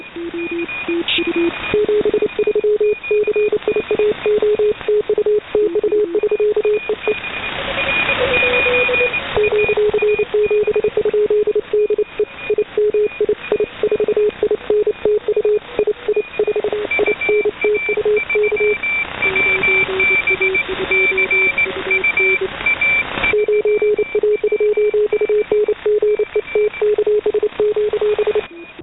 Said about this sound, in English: We're going to hear the Morse code signal first, and then I will go ahead and read the translation from our decoder software.